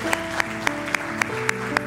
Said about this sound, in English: Can we just take a moment right now to honor those who just said yes to Jesus? Can we just applaud them for that?